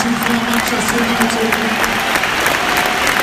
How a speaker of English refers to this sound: Marcus Rashford is getting a deserved applause from the whole of the ground. A standing ovation.